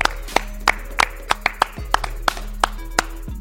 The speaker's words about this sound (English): Way to drive the ship. Did this. Clap it up.